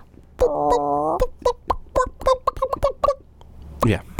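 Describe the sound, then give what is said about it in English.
A person imitates a chicken, starting with a drawn-out squawk followed by a quick series of short, rhythmic clucks, ending in a breathy rasp; fairly loud. “Well, I've learned how to talk to them. You speak chicken.”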